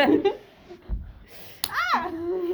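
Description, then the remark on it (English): A single sharp slap of a hand against another person's hand during stim clapping cuts in mid-clip, immediately followed by a loud rising vocal yelp, with casual voices talking before and after. “You just hit my hand while I was stim clapping.”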